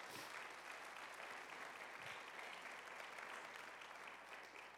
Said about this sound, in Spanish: Vamos a darle el aplauso.